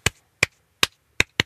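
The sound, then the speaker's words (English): Five sharp hand claps in an uneven word-like rhythm: three evenly spaced, then two quicker ones close together at the end. The claps follow the rhythm of the words "14 fort photographs" in a Clap It Back game. No voices. “So if you hear 14 fort photographs, you would clap.”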